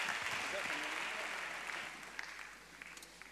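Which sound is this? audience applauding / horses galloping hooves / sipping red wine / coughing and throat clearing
audience applauding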